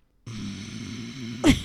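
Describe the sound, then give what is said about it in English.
A person imitates the Hulk getting angry, making a low, rough, growling exhale held for about a second like heavy angry breathing, then ending with a sharper, louder grunting burst. No words are spoken. “That's just you breathing hard.”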